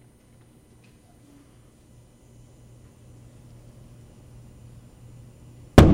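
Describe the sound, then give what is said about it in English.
After several seconds of low, steady hum, a hydrogen-only balloon is ignited with a long torch and gives a single sudden loud pop-like blast right at the end, a mild explosion as the hydrogen reacts with oxygen in the air, sharply rising above the quiet background. “You can see an explosion, but a relatively mild explosion, as the hydrogen reacts with oxygen in the atmosphere.”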